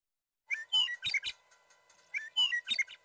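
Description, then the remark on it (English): A Western meadowlark sings two clear, bubbling phrases of flutelike whistles and warbles, separated by a short pause, heard alone. “So that's a Western meadowlark.”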